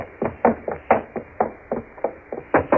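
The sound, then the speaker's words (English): Rapid, insistent knocking on a wooden room door that is bolted on the inside, about a dozen sharp raps in uneven bursts, fairly loud, with no voices during the knocking. “you all right? Open the door. She doesn't answer.”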